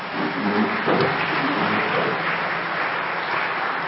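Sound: audience applause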